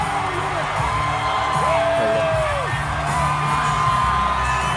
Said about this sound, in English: Ladies and gentlemen, welcome to the stage, Governor Ron DeSantis. He's the governor. Crowd going nuts. See, the crowd seems pretty upset about it. It went crazy.